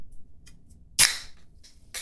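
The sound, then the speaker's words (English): A few faint metallic clicks, then a PBR beer can snaps open with one sharp, loud crack and a fizzing hiss that fades, followed by brief bursts of bubbly pouring noise as the beer is poured. “That is the opening of a PBR can and being poured into...”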